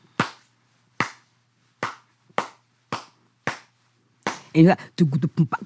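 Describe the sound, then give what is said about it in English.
Six crisp, loud hand claps beat out a traditional rhythm called a chaung in a steady, slightly uneven rhythm, each a sharp isolated smack, before a voice starts speaking over the end. “Can you just clap out what that rhythm would be like?”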